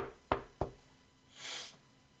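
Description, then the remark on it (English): Two sharp knocks on a closed door in quick succession, fairly loud, followed by a soft swishing noise with no voices. “I just knock on the doorway. No, door's closed. Twice.”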